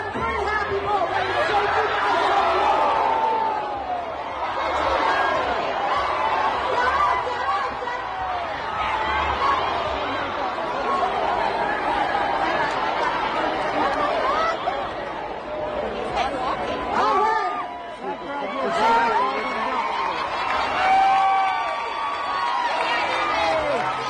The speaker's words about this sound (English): You can even hear the panic of the crowd in the background.